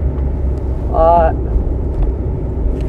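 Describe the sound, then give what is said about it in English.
Steady low rumble of a car moving along a little side road, heard from inside, with a brief voice-like tonal sound rising over the engine and road noise. “Right now I'm currently driving on a little side road, trying to see if I can, if I could still get on the highway.”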